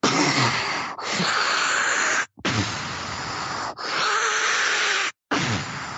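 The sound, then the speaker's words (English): A voice imitates the breathing of a giant tube-like respirator machine with a series of loud, breathy hissing whooshes, about five in a steady rhythm, each broken by a brief silent gap. “I believe it has leaded glass, so it's unbreakable, but you can see through it. You can see the individual that's in it, and it sounds like...”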